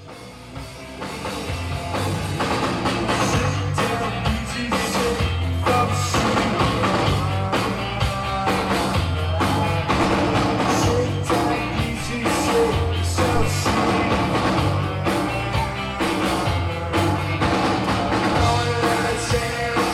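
A loud rock song plays continuously with a full, dense band sound, heavy driving bass and bright cymbal-like wash, steady in volume throughout with no talking over it.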